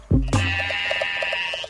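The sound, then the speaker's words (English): A sheep gives a single loud bleat, followed by a steady high electronic tone with soft rhythmic pulsing underneath until the end. No one speaks. “When they go blah, blah, blah, do you go ba, ba, ba?”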